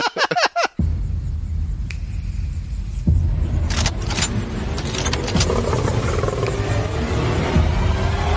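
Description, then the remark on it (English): A lion in a film clip roars and snarls as it attacks hunters armed with bows and arrows who have been wounded: a loud, chaotic attack with deep rumbling growls running almost continuously, and sharp snaps and clatters breaking through near the start and midway. “But she wounds them enough for the lion to run up and eat them.”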